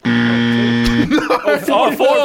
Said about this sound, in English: Check your buzzers, please.